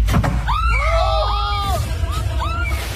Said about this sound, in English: I know that was me screaming and splashing.